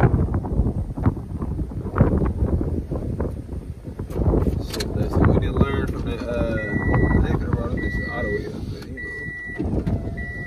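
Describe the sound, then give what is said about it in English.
Gusty wind buffets the microphone with a low, rumbling roar throughout, while a voice talks underneath and a series of evenly spaced high beeps sounds in the background. “So, damn, it's windy.”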